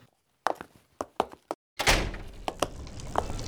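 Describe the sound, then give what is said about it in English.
A quick series of wooden knocks and latch clicks, then a short pause before a heavy door thuds shut with a rushing slide, followed by a few sharp metallic clicks as it locks automatically. No voices. “The only light is from the roof, and the door locks automatically.”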